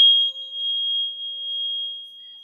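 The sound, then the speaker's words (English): A steady, pure sine tone, the so-called love frequency for the heart chakra, hums alone for a couple of seconds at a fairly high pitch, holding constant with slight wavering in loudness and no voices. “This is the love frequency.”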